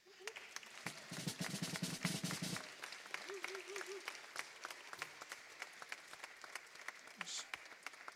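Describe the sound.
A crowd breaks into sustained applause, dense overlapping claps running steadily for several seconds, with a few voices and a brief warbling whoop mixed into the clapping.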